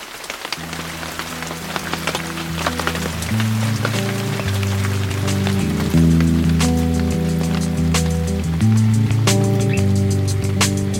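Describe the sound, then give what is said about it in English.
The first scattered raindrops fall during a beach vacation in Hawaii, tapping and pattering, starting sparse and growing steadier, over a sustained low musical drone whose chords shift slowly. No one speaks. “Just as I unscrewed the lid of my Nalgene to toast the Aloha Life, the first drops of rain began to fall.”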